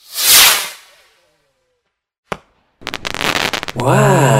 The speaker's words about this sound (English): Grab a firework. That's a firecracker. Huh? Yeah, light it.